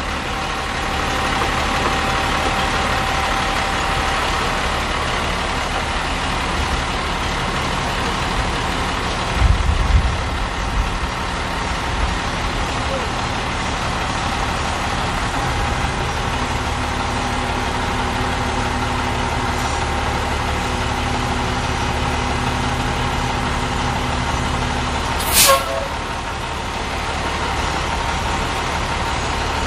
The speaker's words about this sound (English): Yeah, so it has a dump bed on it. It dumps. It's fully functional dump truck, so it's pretty, but it's still a work truck. Let me dump it for you.